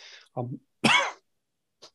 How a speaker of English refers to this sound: sorry, the coughs just slip in while I'm talking.